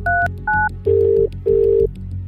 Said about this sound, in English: With a sigh, she picked up the phone to dial the reception desk.